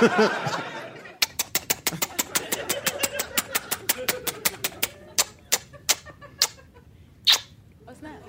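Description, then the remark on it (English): A prize wheel spins with a rapid run of sharp clicks that gradually slow and space out until it stops, landing on "bird flu". Voices and a bit of laughter are heard briefly at the start. “Let's spin it again.”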